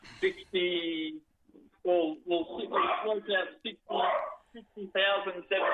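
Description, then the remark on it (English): A dog barks repeatedly in the background in a series of sharp, yelping bursts with short pauses between them, fairly loud throughout. “There's the killer dog. You got the killer dog in the background.”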